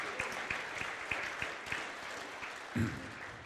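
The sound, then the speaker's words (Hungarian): An audience applauding the Lord during a church service, a dense wash of many hands clapping steadily at a fairly even level for a few seconds, with a brief low vocal sound near the end. “Meg lehet tapsolni nyugodtan az Urat.”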